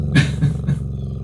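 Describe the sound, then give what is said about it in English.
A voice imitates a loud, rough growl: three gravelly pulses in quick succession, then trailing off into a low rumble, with no talking around it. “rotates in place and growls loudly.”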